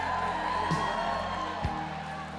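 audience applause and cheering

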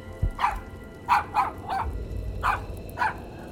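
dog barking

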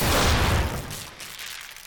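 explosion

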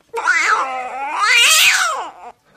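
cat meow sound effect

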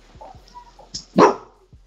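dog barking

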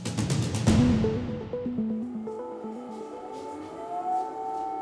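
air raid sirens blaring

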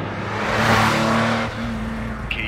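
car driving and accelerating

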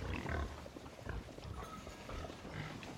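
pigs squealing and grunting

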